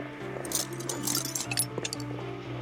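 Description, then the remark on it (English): A handful of small metal screws is grabbed from a compartment, the screws clinking and rattling together in quick, bright bursts over a steady low hum, scattered jingling taps rather than an even rhythm. “Grab the drill and a handful of screws.”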